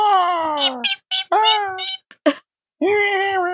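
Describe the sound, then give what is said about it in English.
A person's voice imitates a sleepy cat's meep: three drawn-out, nasal, squeaky mews, fairly loud, separated by short clicks and breathy sounds. “It's that sound that your cat makes when you wake it up.”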